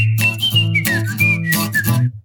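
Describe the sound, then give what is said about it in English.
A bright whistled melody of on-hold phone music, gliding between a few high notes over a steady low accompaniment with rhythmic bursts, loud and with no talking. “And Tom played this in you when you're on hold.”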